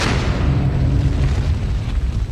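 A deep, rumbling explosion boom depicting a supernova, a star blowing up after its core collapses, roars steadily for a couple of seconds, heavy low-end energy swelling loudly with no speech over it, like a cinematic blast sound effect.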